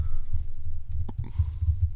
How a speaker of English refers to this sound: So the for those of you listening at home, every time you hear all of our mics vibrate with typing, somebody said a potty word.